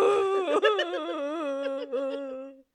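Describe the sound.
A human voice imitates a primate's distressed hoo call: one sustained, wavering, moaning tone that rises and falls in pitch for about two and a half seconds, fairly loud and with no other sounds.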